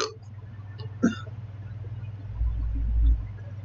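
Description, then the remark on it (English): A short, abrupt hiccup pops out near the start, with another faint catch just before it, over a steady low electrical hum and a brief low rumble later on. No talking. “Of all the time I could have hiccups, I get it now.”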